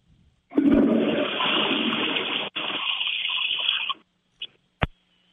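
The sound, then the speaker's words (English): A toilet flushes loudly, a rushing gush of water lasting a few seconds before cutting off, followed by a couple of brief clicks or knocks. “Flush of the toilet.”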